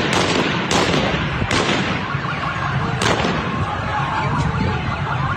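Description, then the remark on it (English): Sharp gunshots crack at irregular intervals through a dense, constant din, with car alarms wailing and blaring continuously, in a loud street scene in Khorramshahr, Iran. “That sounds like gunfire. It sounds like car alarms.”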